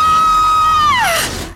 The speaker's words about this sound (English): If you want to be honest about it, I'm pretty embarrassed about that scream. The kind of scream a 5-year-old girl would be proud of.